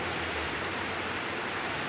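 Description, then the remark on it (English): A steady, dense hiss of heavy rain pouring down, constant and fairly loud across the whole stretch, with no talking and no breaks in the wash of noise. “Oh yeah, that's a good downpour we got going on today.”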